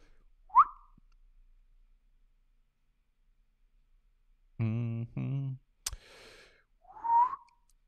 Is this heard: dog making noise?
no